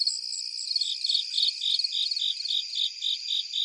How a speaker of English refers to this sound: So it's kind of fun to do that as you're, it's almost like you're changing the station on cricket radio. You're like going through the different channels, which are really the different heights that they're calling from these different species.